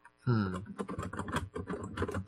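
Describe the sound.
Rapid clatter of typing on a really old Logitech keyboard that sounds mechanical, the keystrokes clicking in an uneven, continuous stream, with a brief murmur of a voice near the start.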